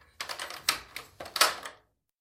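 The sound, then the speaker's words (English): Keys jingle and scrape in a brief fumble, with several sharp metallic clicks as the heavy old lock of a massive old wooden door turns, then silence. “I fought with my keys for a moment until there was an audible click of the heavy old lock.”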